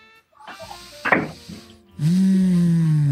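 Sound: clicking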